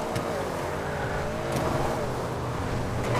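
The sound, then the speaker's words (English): A video game car engine drones loudly and steadily throughout as the car attempts a jump and wrecks, broken by a few brief, sharp bursts that sound like crash impacts. No one speaks. “Lord, that was not a jump. That was a wreck.”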